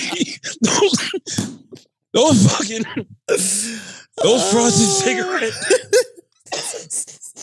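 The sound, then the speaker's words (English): A voice breaks into a fit of laughter that turns into coughing, with wheezy, strained bursts and breathy gasps in quick succession, loud. “That was a laughing cough.”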